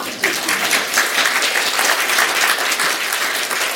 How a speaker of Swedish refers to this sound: Spontana applåder.